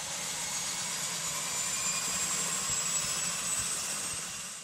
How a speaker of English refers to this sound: Right engine is turning. 12% fuel.